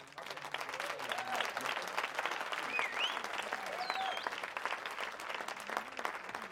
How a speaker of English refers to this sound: That was a slow clap. We'll add the slow clap sound effects in post-edit.